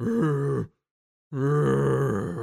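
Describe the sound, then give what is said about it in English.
A voice imitates the grunting scream of a shadowy figure struck by a firebolt, in two loud, strained bursts separated by a brief silence, each a low, rough, harmonic-rich growl that wavers in pitch. “It's a different gruntle scream than before.”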